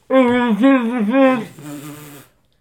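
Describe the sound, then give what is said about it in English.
A voice imitates the chirp of a Boost Mobile walkie-talkie phone, making a loud, nasal, warbling tone in three quick pulses that drops into a lower, softer held note before stopping. “Chirp phones.”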